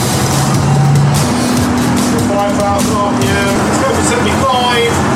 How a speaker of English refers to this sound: So here we go. This is going to be a world record attempt for the world's fastest all-electric ice cream van. So here goes.